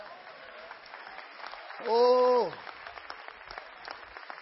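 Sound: audience clapping hands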